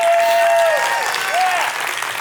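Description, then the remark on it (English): An audience breaks into loud, sustained applause to show appreciation for someone, a dense steady patter of many hands clapping, with a couple of gliding whoops or cheers rising above it. “So if we're gonna go for it and show our appreciation for somebody, let's give it to them.”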